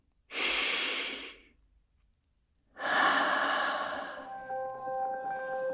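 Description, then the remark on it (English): A slow, airy breath drawn in, a short pause, then a longer, steady breath let out. Faint sustained tones hum softly beneath the end of the exhale, with no talking. “Take a long breath in and let it out slowly.”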